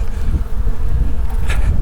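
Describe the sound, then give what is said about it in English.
Dense, loud buzzing of many wasps, a continuous low droning hum with wings swelling and fading as they swarm around, no voices present. “Oh my god, there's so many wasps.”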